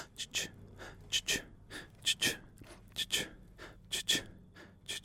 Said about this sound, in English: All right, we'll pop a bit of a rhythm over this as well. So we'll do a bit of a breathing sound. We'll go.